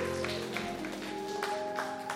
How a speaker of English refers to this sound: Come on, clap your hands all over this place. Come on. Give him some glory.